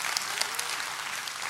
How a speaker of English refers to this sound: And please know, I don't need the applause. In fact, I don't want the applause. In fact, I don't deserve the applause, but he sure does. He sure does.